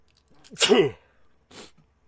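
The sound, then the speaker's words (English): A single loud sneeze with a sharp intake and explosive burst, followed a moment later by a short breathy sniff, then quiet. “And such and such, and Gesundheit.”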